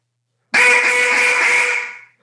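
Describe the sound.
A duck call blown in one long, loud, buzzy quack, a nasal reedy tone held for about a second and a half before tapering off. No voices are heard.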